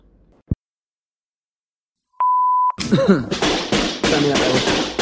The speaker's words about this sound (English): You've reached Sean Connery. Leave a message or a massage after the beep or the tone.